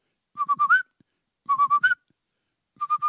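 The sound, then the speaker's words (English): Birds outside a window: one sings the same short whistled phrase three times in a row, each a quick run of clear, mid-pitched notes rising at the end, with brief pauses between repeats and no talking. “You know, I had to move things around in my studio because shit was too close to a window and they were just losing their damn minds, singing the same fucking song over and over.”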